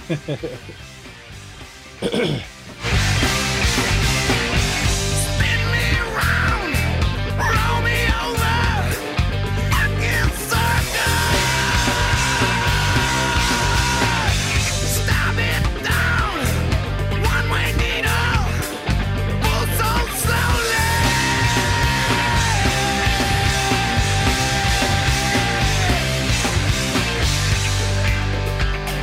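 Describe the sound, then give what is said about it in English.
A loud, dense rock song plays almost nonstop, its intense vocals straining into long held, raw-edged screams over heavy, driving instruments, after a brief quiet gap near the start. “I mean, who can fucking scream like that?”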